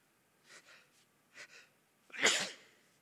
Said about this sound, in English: It happened again. I seldom sneeze up here. This is the second time. I've coughed but not sneezed. Excuse me.